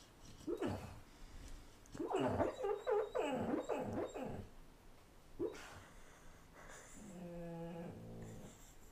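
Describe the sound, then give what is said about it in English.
A female dog lets out soft, muffled howls and whines while asleep, a rising series of low yips and moans followed by a drawn-out, wavering howl near the end, fairly quiet. “She very rarely sleep howls, but it's always a delight when she does.”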